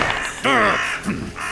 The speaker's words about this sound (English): Stupid bird. I take you out.